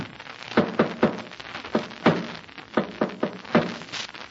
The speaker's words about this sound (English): Then listen to this. I'm going to tap against the wall using the Morse code. Listen.